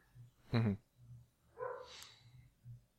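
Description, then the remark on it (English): A dog barks sharply twice in quick succession, a loud yelp followed by a higher, excited bark, over a steady low background hum; the dog is probably Tango. “The dog is very enthusiastic that about is Dota. A really enthusiastic dog.”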